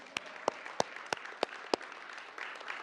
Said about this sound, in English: So now you can clap.